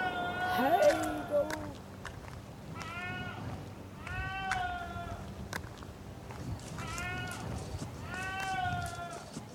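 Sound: goat bleating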